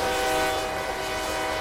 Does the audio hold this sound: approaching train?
yes